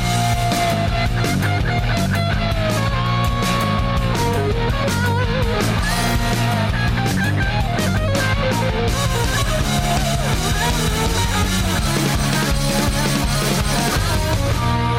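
A full-band rock theme song plays continuously, with driving drums, dense distorted guitars and a steady beat, loud throughout with no talking over it.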